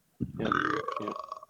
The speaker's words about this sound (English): Is that a chemo burp? Yeah. Yeah. I got chemo burps coming up.